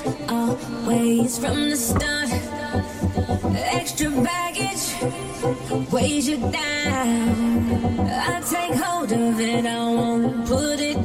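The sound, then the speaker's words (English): A bowed, electronic-sounding instrument sustains wavering tones over a busy, loud song with steady percussive hits and layered harmonics, no voices. “It sounds like an electronic instrument somebody's playing with a bow.”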